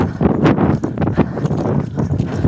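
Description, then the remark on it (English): Heavy, clunky footsteps of a person running fast pound along at a quick pace, each thudding step loud, with a rushing wind noise from the running filling the gaps between them. “Can you hear how clunky my footsteps are?”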